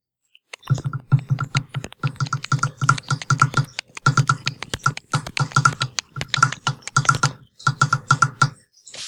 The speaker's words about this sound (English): We're going to give you rain on the windowsill.